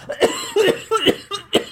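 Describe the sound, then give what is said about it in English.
A loud run of about four or five harsh coughs in quick succession from a person starting to record, each a sharp burst with brief pauses between, and no talking. “Oh, I always seem to have a cough or something when I start to record these.”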